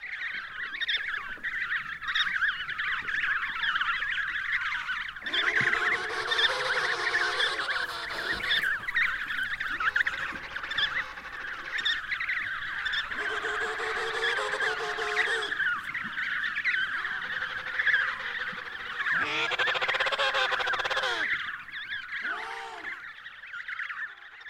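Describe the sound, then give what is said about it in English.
Emperor penguins and their chicks calling in a breeding colony: loud, overlapping trumpeting and warbling cries with wavering pitch, rising in dense bursts over a constant chorus of high chirps and whistles. “This time we're hearing emperor penguins and their chicks.”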